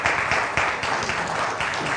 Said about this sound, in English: I'll call him later and tell him you all clap for him. It'll make him feel good.